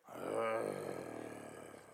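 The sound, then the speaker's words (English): A person gives a loud, sustained growling roar in imitation of a lion, one rough, throaty vocal blast that swells early and then trails off over about two seconds. “The lion starts roaring.”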